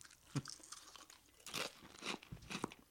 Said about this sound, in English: You hear me crunching? That's got to be pleasant in your ear.